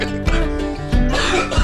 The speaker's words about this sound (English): That's how we cover up coughs.